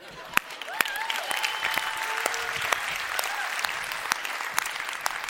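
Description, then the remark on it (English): An audience applauds steadily, a dense patter of many hands with a few sharp, louder claps standing out, plus faint cheering whoops rising over the clapping. “Are we clapping? Let's do it.”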